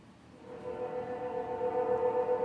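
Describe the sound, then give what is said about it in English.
A train passes at 3:40 in the morning in the USA, a low rumble growing louder with steady horn-like tonal drones sustained over the noise, no talking. “Loud-ass fucking train at 3:40 in the morning.”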